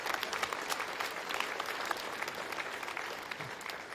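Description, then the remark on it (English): Steady applause from a crowd for the young men, dense and even clapping that holds at a moderate level for the full stretch, with no voices standing out above it. “So I want to applaud our young men.”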